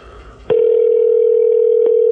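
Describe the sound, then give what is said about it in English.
After a moment of quiet background, a loud, steady electronic telephone ringing tone begins and holds unbroken, a call to a friend ringing on the line while waiting for her to answer. “I feel like she'll pick up because I'm a good friend.”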